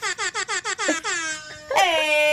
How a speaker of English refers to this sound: How did you have that ready? It's an application on my phone so that I can just queue it up whenever I need Air horn.